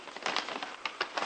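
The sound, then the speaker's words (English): A paper envelope is torn open in quick ragged bursts, a crisp ripping and crinkling that lasts just over a second with no voices. “All right, you go ahead and open it up.”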